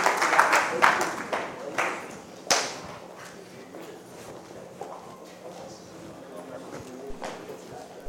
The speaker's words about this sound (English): Our time is up. Clap for the Lord and stand to your feet. Stand to your feet.